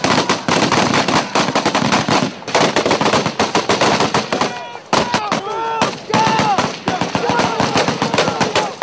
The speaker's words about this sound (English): Night, a firefight, shells explode with flashes of light. Combatants drop to their stomachs on sandy terrain. Tracer rounds, streams of light from firing weapons streak through the air.